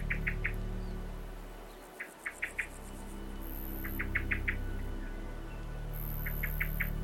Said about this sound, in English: I'm standing in the middle of quite a small meadow that hasn't yet been cut. And as well as that blackbird that's really annoyed by me, I'm hoping you can hear the differing sounds of grasshoppers all around me.